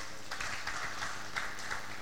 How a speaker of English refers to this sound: Let's clap for Jesus.